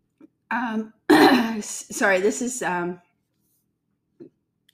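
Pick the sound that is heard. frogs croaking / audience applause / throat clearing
throat clearing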